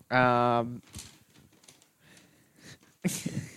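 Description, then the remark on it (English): A gift bag holding Pokemon cards rustles and crinkles in uneven bursts as it is opened, with a louder crackle near the end, just after a short high-pitched vocal squeal at the start. “The rustling is so much more intense.”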